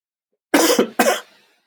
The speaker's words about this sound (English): This is annoying, isn't it? Cough halfway through the podcast. It's not good.